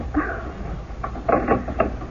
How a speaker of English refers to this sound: Lock it. Well, do you mean that? Lock the door, yes, please.